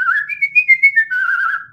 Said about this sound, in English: I got a few talents, man. Like, I whistle well.